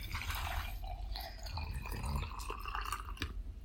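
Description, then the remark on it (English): Sangria pours steadily from a pitcher into a glass, a gurgling stream with small splashes and drips, the tone shifting as the glass fills. No one speaks. “I'm pouring more sangria.”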